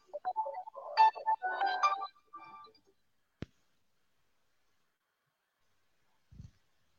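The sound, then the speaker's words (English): A mobile phone ringtone plays a bright, warbling melodic phrase for about two seconds, then cuts off; a single sharp click and a soft low thump follow in otherwise quiet surroundings. “My phone was a call came through on my phone and I had to.”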